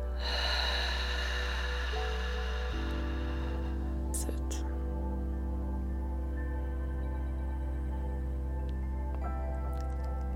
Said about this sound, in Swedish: Vi börjar med att ta ett djupt andetag in genom näsan, och vi fyller upp bröstkorgen och magen med luft. Och släpper långsamt ut andetaget genom munnen.